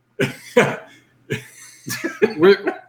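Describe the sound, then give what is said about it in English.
Several harsh coughs from a person about to start a live recording, two sharp ones early, then a pause before a rougher cluster of throaty coughs and hacking toward the end. “I'm going to cough all day.”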